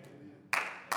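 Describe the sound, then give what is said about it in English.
Sparse clapping from a small audience of four people: a couple of sharp, bright hand claps burst in after a quiet moment, loud against the low background, with no one talking. “And the other three that applauded.”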